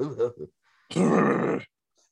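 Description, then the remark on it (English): A short vocal murmur, then a single loud, raspy throat clearing that rumbles for under a second before stopping abruptly, followed by silence. “Oh, shit, I gotta clear my throat.”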